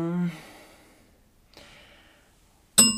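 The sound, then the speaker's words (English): A single bright ding of a "No" bell rings out loud near the end, its tone hanging briefly, following a breathy vocal sigh and a quiet pause. “Oh, what's wrong with our No. bell?”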